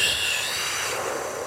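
A long, deep breath drawn in through the nose, a steady airy hiss that holds at an even, fairly loud level for about a second and a half with no talking.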